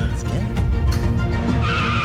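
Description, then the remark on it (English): Car tires skid loudly over a rumbling engine, the squeal rising into a sustained high-pitched screech toward the end of the two-second burst. “We're in the car.”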